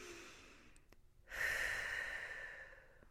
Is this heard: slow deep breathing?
yes